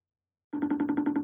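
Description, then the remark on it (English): A FaceTime video call ringing tone starts abruptly after a brief silence, a steady electronic tone pulsing rapidly in an even rhythm, fairly loud, with no voices. “No, I'm FaceTiming you. I'm ringing. FaceTiming you.”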